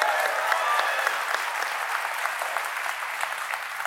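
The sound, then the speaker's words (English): A studio audience claps steadily for an interviewer's question about the show Succession, a dense wash of many hands with bright, crackly texture that holds fairly even and loud throughout, no voices standing out. “You don't have to applaud my questions.”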